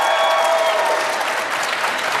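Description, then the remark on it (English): A crowd applauding steadily to vote for team payments as the winner of a debate, a dense, continuous patter of many hands clapping at an even, fairly loud level, with a few faint whoops or voices mixed in at the start. “Okay, team payments, give them a round of applause if you think they won.”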